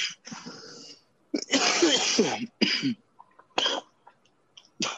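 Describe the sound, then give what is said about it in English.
A person coughs repeatedly in a loud, harsh fit of several bursts with rough, raspy throat-clearing, with brief pauses between the hacking coughs. “God damn, I just got this fucking cough I can't get rid of.”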